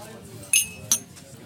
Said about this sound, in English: No, don't clink, it's common. Yeah, but we're in Burnley now. Cheers, yeah, all cock. Right, clink. Clink away.